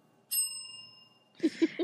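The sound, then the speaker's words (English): A small hand bell rings: one clear, bright strike that hangs and slowly fades, followed by a few quick, rattling shakes of the bell near the end. Fairly loud, with no talking. “Where's my bell?”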